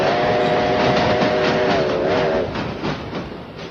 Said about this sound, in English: Train clock.